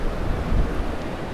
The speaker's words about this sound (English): Man, it's torrenting down. This is the same river we've kind of been walking along all day.